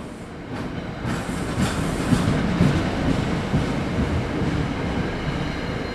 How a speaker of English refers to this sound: gathered at New York's Penn Station, waiting for our early morning train to Newark.